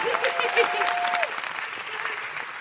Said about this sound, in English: Jess, thank you so much for coming on. Huge round of applause for Jess Robinson.